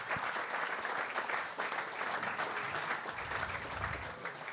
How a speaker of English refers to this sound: Stand up and give this man a round of applause, please, everybody. This guy is brilliant.